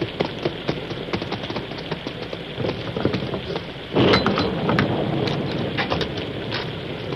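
nature, thunderstorm with heavy rain

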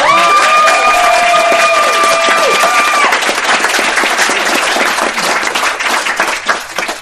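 crowd, audience applause and cheering

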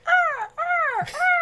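bird, bird calling

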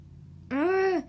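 human body sound, hiccup

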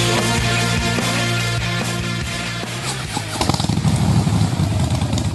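vehicle, motorcycle engine revving

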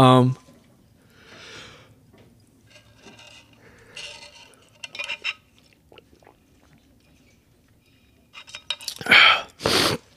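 human body sound, drinking water

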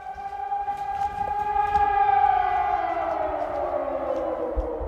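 signal or alarm, air raid siren wailing

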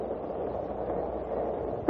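impact, starting cannon firing

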